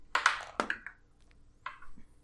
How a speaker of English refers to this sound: My dice rolled from a 20 to a 2, in fact.